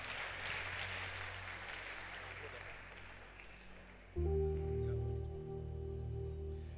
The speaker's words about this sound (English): Clap as we welcome him.